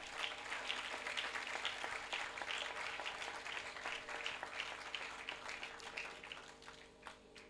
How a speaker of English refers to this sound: Please clap for this woman for living with me for 32 years.